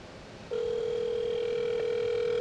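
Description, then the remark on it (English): A phone call ringing, with the phone held up to a microphone: after a half-second of faint background hiss, a steady, fairly loud electronic ring tone starts and holds unbroken to the end, with no talking. “Call it and put it up to the microphone so they can hear it.”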